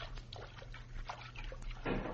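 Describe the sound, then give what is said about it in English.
Water sloshes and splashes as someone wades slowly through a river toward its bank, with irregular soft surges and a louder splash near the end over a low steady hum. “Now we are at the bank. Make no noise, Pancho. Now, crawl out of the water.”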